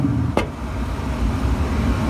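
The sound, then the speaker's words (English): A smoker burner roars steadily with a deep, continuous rumble as it heats up with the cover open, the control knob turned up two notches to 225, broken by one brief sharp click early on. No one speaks. “And now you can hear that it is really starting to roar.”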